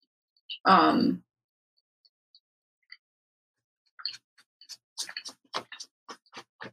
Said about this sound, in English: I also... I'm trying not to chew into the microphone.